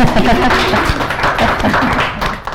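A crowd applauds with dense, steady clapping that fills the whole clip at a fairly loud level, many hands overlapping into a continuous patter with a few sharper individual claps standing out.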